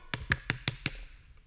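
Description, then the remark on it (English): Five quick, evenly spaced knocks rap on a wooden door, fairly crisp, then a brief quiet tail with no voices. “He knocks again.”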